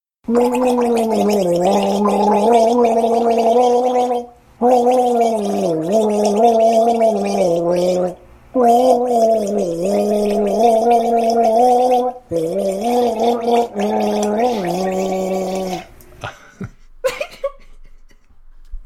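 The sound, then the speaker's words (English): Someone with a full mouth of water gargles while singing a tune for a guess-the-song game round, the melody bubbling through in several long, loud phrases separated by short pauses, ending with a few sputtering, gurgling bursts. “Oh yeah, he definitely that he committed to the gargle, and I do appreciate that.”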